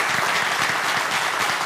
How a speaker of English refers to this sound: Now, I know there's a lot of other people who they included in all of that, but we do want to thank them this morning for being the leaders of our VBS. So if y'all would, give them a round of applause.